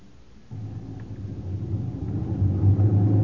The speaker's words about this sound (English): Traffic's building up. Busy little town.